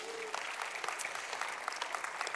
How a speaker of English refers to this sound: If you would just give her a big round of applause real quick.